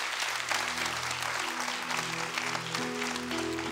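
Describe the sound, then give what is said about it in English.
A standing audience claps steadily after a sermon, a dense, continuous wash of many hands applauding at an even loudness for several seconds, with a low sustained tone humming underneath and no one speaking. “If we're going to clap, let's all clap.”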